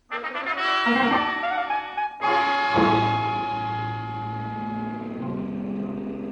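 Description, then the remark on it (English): A Nash car engine roars to life and revs hard, then surges with a second loud burst and holds a steady rumbling drone as the car speeds away. No one speaks. “The way we took off in Corey's Nash, I wasn't sure whether her license was for driving a car or an airplane”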